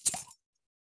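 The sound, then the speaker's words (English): A beer bottle is pried open with a keychain opener: one quick metallic pop with a bright burst of fizzing hiss, lasting about a third of a second, then silence. “The keys have a bottle opener attached, and that opened my beer.”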